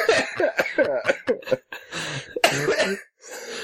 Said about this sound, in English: I'm sorry. I coughed so hard my earbud fell out, and I don't know what you're saying.